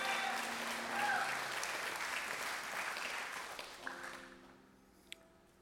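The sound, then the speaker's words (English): A church audience claps together in a dense, steady wash of applause that gradually thins and fades, with a few scattered voices and brief tonal sounds near the end as it dies away. “You can clap, it's good.”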